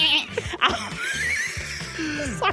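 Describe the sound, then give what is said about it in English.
A goat bleats loudly, a couple of shaky, wavering cries running almost continuously for a few seconds with a quaver like nervous laughter. “Yeah, maybe I'll chat to this goat.”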